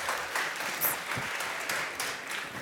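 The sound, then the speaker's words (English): An audience applauds steadily as a speaker is welcomed after a film is shown, many hands clapping in a dense, continuous patter at moderate volume, with no voices breaking through. “That's nice to be clapped on.”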